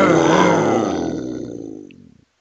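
lion roar sound effect

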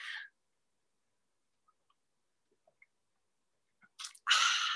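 sipping hot tea

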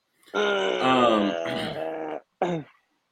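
throat clearing cough

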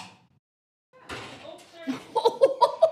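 door being closed

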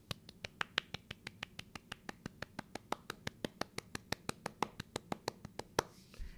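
one person clapping hands

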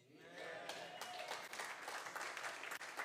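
audience clapping

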